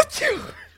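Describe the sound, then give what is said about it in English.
A single short sneeze: a sudden breathy burst followed by a brief voiced, falling tail, fading out in under a second with no talking. “I think I'll just sneeze.”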